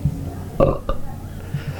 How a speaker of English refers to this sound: Number two. Was that a belch?